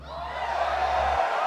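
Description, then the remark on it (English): An audience screams and cheers together in a steady, dense roar of many voices, loud and sustained, with a few whoops and laughs mixed into the wash of sound. “When you've got it, scream.”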